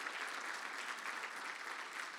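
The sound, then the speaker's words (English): Steady audience applause for a guest speaker introduced as a former law school dean, a dense, continuous wash of many hands clapping at even loudness throughout, with no pauses or voices standing out. “You can applaud for that one.”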